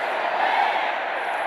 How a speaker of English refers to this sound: Just over 68,000 fans made it to Reliant Stadium. The majority of that crowd was cheering for the green and gold.